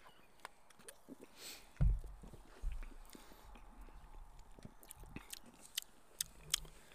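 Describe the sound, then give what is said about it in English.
Mouth noises of someone sipping a soda while tasting food: a couple of soft, low gulps followed by scattered small wet clicks and smacks, quiet and with no talking. “So, let's have a sip of this and see how this pairs.”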